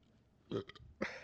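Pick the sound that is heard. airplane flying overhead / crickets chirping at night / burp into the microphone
burp into the microphone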